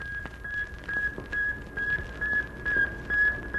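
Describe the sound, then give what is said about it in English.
A satellite radio signal sent from orbit 560 miles above the Earth after its antennas deploy: a steady high electronic tone pulsing in regular, evenly spaced beeps, about two per second, over a faint background hiss with no voices. “Then the antennas shoot forth, and like the cry of a newborn babe, a tiny voice is heard from the vastness of space, 560 miles above the Earth.”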